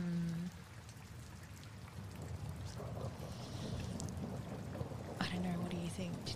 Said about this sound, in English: Is it starting to rain? Yes. Yeah, the telltale Morrowind weather turns on you, and in the south, the rain is pouring.